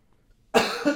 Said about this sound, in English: I feel really bad about coughing,